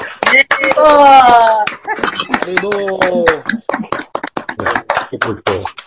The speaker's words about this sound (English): And I really got to say, these kids are wonderful and they deserve a huge round of applause. So if everyone wants to take themselves off mute for a second, let's give these kids a round of applause here for being so awesome.